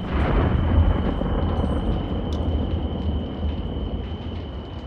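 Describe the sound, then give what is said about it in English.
A muffled storm rumbles steadily, heard from inside the walls of a castle in a BattleBards soundscape: a deep, continuous roar of wind and rain, fairly loud and unbroken, with no voices. “Inside the walls of a castle during a storm.”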